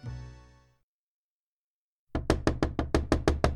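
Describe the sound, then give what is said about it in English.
A fading tonal note gives way to silence, then a quick, steady series of about ten loud knocks on a door, each a sharp rap with a short decay. “A knock on the door startled Nadia awake.”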